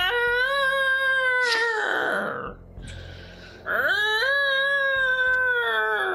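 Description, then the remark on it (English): A loud, ear-splitting shriek wails like a siren from the direction of a lighthouse, heard from about 7 or 8 miles away at the base of a peninsula: two long, sustained piercing cries with rising and bending pitch, broken by a short, rougher, quieter stretch in between. No voices. “But what you do hear when you get maybe, I don't know, 7 or 8 miles away, get to the base of the peninsula, is this loud, ear-splitting shriek that emanates from the direction of the lighthouse.”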